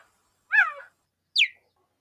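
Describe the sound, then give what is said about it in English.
A cheetah gives two separate calls: first a harmonic, slightly descending yelp, then after a pause a short, high, bird-like chirp that sweeps downward. Both are clear, with silence around them. “That is incorrect. It is a cheetah.”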